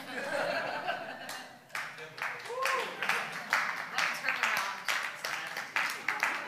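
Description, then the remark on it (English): Thin, scattered clapping from a small crowd mixed with light chuckles and laughter, uneven and sparse rather than a full round of applause, with a faint voice murmuring briefly. “That's like a 10% clap. That was your tithing of clapping.”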